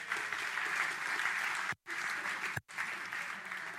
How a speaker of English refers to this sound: Give him a big clap.